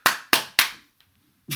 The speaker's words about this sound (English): I did a little clapping